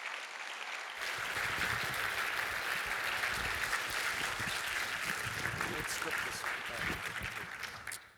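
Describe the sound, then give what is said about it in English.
Sustained audience applause at an event for the volunteers, a dense crackle of many hands clapping that starts abruptly, holds steady and loud for several seconds, then tapers off at the end. “Can we give them a round of applause too, please, folks?”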